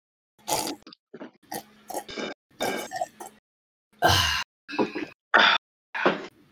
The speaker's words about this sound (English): That was a good sip of water. That was actually a super good drink of water. I'm glad that we did that. That really refreshed for my day.